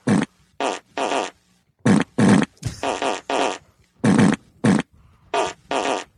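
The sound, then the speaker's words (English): A rapid string of loud fart noises, about a dozen bursts in quick, uneven rhythm with short gaps between them, each one a buzzy, full-bodied blast. “Oh, he's gone into a fart circle. It takes him forever to break out of one of these.”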